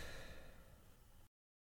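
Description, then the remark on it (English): A person yawns, a breathy, drawn-out exhale lasting just over a second that cuts off abruptly into silence. “You want to redo that without yawning?”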